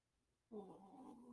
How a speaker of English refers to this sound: is purring. And his tail is wagging. It's just too bad this cat sheds like nobody's business.